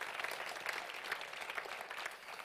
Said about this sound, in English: Come on, if we're going to clap, let's clap.